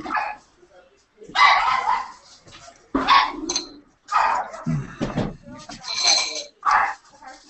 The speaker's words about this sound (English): What is happening over there? Sounds like somebody came over and Ruby's going nuts, or they brought another dog in.